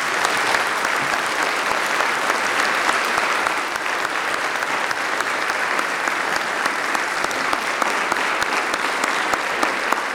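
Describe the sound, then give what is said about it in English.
Sustained applause from a large audience for a choir and orchestra, a dense, steady wash of clapping at constant loudness with no talking over it. “Giving a thank you and a round of applause to our choir and our orchestra.”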